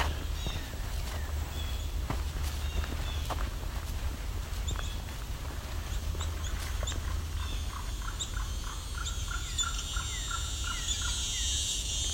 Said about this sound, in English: These are presumptive yellow-billed cuckoo.